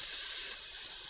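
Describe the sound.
A person imitates a snake with a steady, sharp hiss through the teeth, held unbroken for about a second, with no speech around it.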